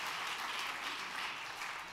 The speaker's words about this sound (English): Amen, that's right. Give the Lord another good hand clap of praise. I like doing that every week. I said, I like doing that every week. Hallelujah. Amen. One more time, give the Lord a hand clap of praise as you're being seated tonight.